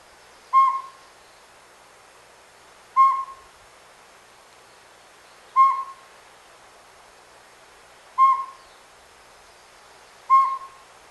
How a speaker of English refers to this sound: And hear the sound of the beautiful pygmy owl. And you may be so lucky one day as to see one yourself.